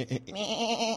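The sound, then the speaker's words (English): A person on the Mike Novak Show imitates a goat, giving one drawn-out, quavering bleat with a wobbly vibrato. It is fairly loud, preceded by a brief vocal sound, with no other talking. “The goat is feeling a little safer. He's not going to be barbecued.”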